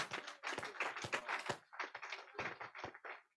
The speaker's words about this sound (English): The great clap for the Lord Jesus.